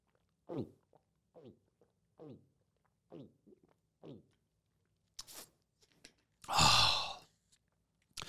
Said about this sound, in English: Drinking's always better when you make that gulping sound. I don't know why, but just a... sounds like a baby crocodile looking for its mother.